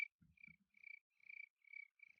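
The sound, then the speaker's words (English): A person whistles an imitation of a cricket: five or six high, trilling chirps in an even rhythm, fairly quiet, with a couple of soft low thumps at the start. “I can whistle like a cricket.”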